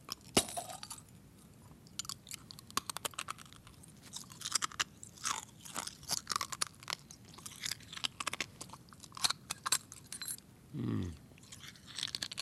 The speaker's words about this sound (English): I'm gonna bite into it and then I'll chew on the glass.